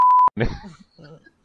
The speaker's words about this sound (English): Long beep.